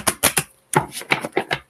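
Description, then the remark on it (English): Tarot cards being shuffled for a Cancer reading: three quick, crisp papery slaps, a brief pause, then a longer run of rattling riffles. Fairly loud, with no one talking. “Three more shuffles for Cancer.”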